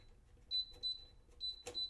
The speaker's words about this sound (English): And since it's off right now, if I turn the temperature dial, it's gonna error beep at me. Like that.